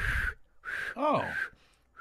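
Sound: person attempting to whistle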